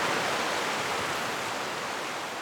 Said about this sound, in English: The trees open up into a sunny cove. The creek becomes the ocean. The mist rises off the waves into the light as they crash. The tide is high right now, and most of the beach is covered with these smooth rocks that kind of click against each other